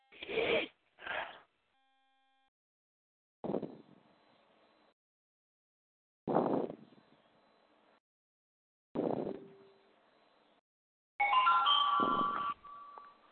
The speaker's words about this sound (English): What are we, on Wheel of Fortune here? Well, it's a notification that I get.